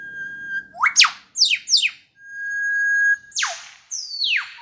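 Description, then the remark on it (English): A male superb lyrebird mimics an eastern whipbird: a held whistle breaks into three sharp whip-crack sweeps, then a longer whistle snaps into two more cracks. Loud and clear, with no talking. “And even an eastern whipbird.”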